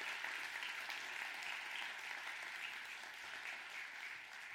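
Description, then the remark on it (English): A church audience applauds together, praising God for the opening of phase two this week, in a steady, dense wash of clapping that holds at an even level for several seconds, with no voices standing out. “but I wanted to clap with you”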